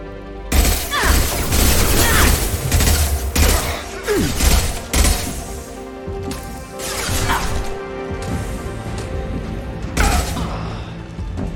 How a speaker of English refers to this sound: Hey, Flamethrower Man dies to an explosion. That's hilarious, right?